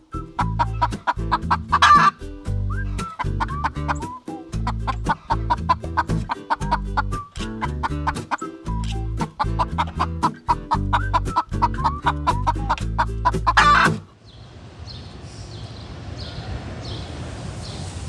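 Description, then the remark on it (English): A rescued pet house rooster named Rufus clucks loudly in a steady run of repeated, throaty calls, then stops abruptly, leaving a quieter outdoor background with faint high chirps. “But that's the time I rescued a rooster.”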